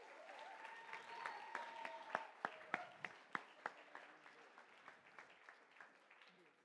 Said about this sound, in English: All right, clap it up or something.